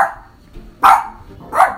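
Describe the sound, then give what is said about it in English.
Luna the dog gives two loud, sharp barks, spaced less than a second apart, after a fainter bark-like sound at the start. No one speaks. “So, Luna, on a scale of 1 to 5, how many yummy doggy treats do you give this story?”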